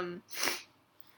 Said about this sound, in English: Sorry, you have to keep listening to me sniffling. Getting over a cold.